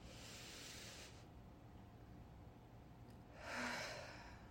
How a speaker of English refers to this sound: We're also going to take a breath. We're going to breathe in for three, hold for three, exhale. Ready? Breathe in.